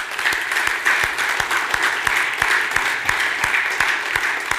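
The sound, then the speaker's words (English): An audience applauds the Lord, clapping steadily and loudly, a dense wash of many hands with a few sharper, individual claps standing out throughout, no voices distinguishable. “Let's give the Lord an applause this year.”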